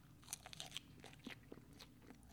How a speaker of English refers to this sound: I almost lost all those thoughts to chewing and just came back and said, man, Seattle's nice.